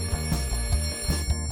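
An old telephone bell, rung after a number is keyed through a Strowger switch, rings continuously with a rapid, rattling metallic clatter, loud, filling the whole moment without any voices.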